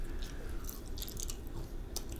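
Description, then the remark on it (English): Crunchy chewing of a gingerbread-flavored snack, with a run of sharp, crackling bites and crunches over a couple of seconds, loud with no talking. “Oh, did you listen to that crunch? That was a hell of a crunch.”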